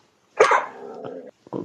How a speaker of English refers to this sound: Uh-oh, the doggy. Is that the doggy? I thought it was my burger. Yeah, it was a dog. Well, the puppy face. We got a little puppy.